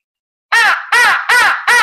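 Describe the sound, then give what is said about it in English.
Four loud, raspy, harsh crow caws follow one another in a steady rhythm, blown on a handheld crow call rather than made by a real bird. “Wow, that's kind of sounds like a crow, but the key is to gargle and use your uvula, and then put that.”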